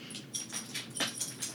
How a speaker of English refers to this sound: My dog is also in the room, if you haven't heard her in the background there.